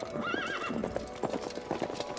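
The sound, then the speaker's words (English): A horse whinnies with a wavering, high neigh, and then its hooves clip-clop steadily in an even walking rhythm as Sir Gawain rides it through a tree line toward the moat of a castle. “Sir Gawain rode his horse through the tree line, nearing the moat that surrounded the castle.”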